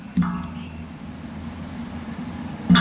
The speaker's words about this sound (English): We're listening to the sounds of maple sap dripping into a bucket.